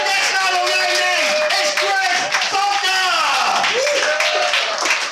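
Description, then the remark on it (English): A loud, sustained burst of audience applause for a comedian, dense clapping mixed with cheering and whooping voices, filling the whole stretch without a break. “What I want is a big applause for this guy.”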